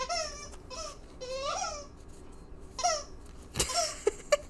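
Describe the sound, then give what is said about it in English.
Bursts of high, wavering squeaks from Ellie's squeakiest rubber toy as the dog chews it, coming in irregular clusters with short gaps, then a few sharp clicks and quick squeaks at the end. “She just, like, can't help but pick up her squeakiest of toys.”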